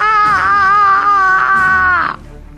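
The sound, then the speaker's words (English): A person lets out one long, loud scream lasting about two seconds, its pitch wavering slightly, before it cuts off abruptly into quiet. “is coming toward you, screaming.”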